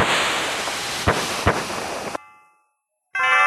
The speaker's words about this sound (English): Are these gunshots? Fireworks. Fireworks.